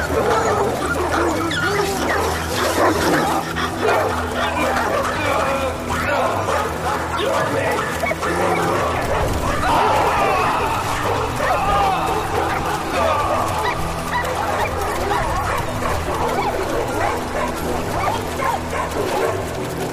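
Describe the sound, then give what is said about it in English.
Several dogs bark and yelp frantically in a dense, continuous commotion, with whimpers and snarling mixed in, loud throughout, like a chaotic dog attack. “Let's see how your tone changes as you get torn apart by dogs.”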